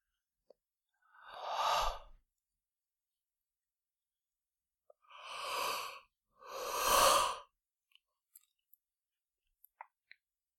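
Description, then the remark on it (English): Three slow, deep breaths close to the microphone during a breathing exercise, breathing into the heart, between belly button and heart: a long inhale, a pause, then another breath in and a fuller exhale, with a few faint clicks in the quiet between. “So taking a deep breath into your heart”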